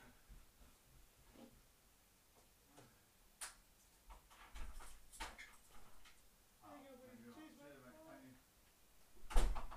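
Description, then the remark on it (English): A door opens and shuts with a few sharp clunks and handle clicks, the loudest bang at the end, while faint muffled voices talk in the background. “Oh, someone at the door, 2 seconds, guys.”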